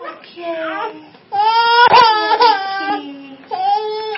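A baby cries and whimpers in several loud, wavering bursts with short breaks between them, the pitch rising and falling in strained wails.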